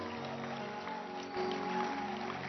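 An audience applauds, a dense, steady wash of many hands clapping that swells slightly partway through, with faint sustained tones humming underneath.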